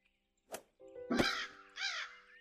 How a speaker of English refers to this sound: Hi, bird.